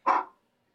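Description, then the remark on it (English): A single short, sharp dog bark as someone pulls up outside next door to get their car, cutting off quickly into silence with no voices around it. “look at Jeff all, like, embarrassed about his dog”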